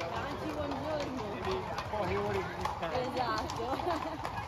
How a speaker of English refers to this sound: And about the other cavalry vehicles in Siena, the horses clip-clopping through the streets. What was that like?